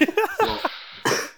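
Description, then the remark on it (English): A throaty cough: several short, clipped bursts, then a louder, breathy hack near the end that trails off. No other sounds or talking. “I hope I can keep this cough in check, man.”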